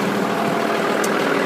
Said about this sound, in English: Just walking past the hot dog stalls and the big generators.